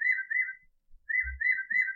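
An Audubon bird-call clock, which plays a new bird call every hour, chirps 11 a.m.: high, warbling whistled notes in two trilling phrases separated by a short pause, with a soft low thump in the gap and no talking.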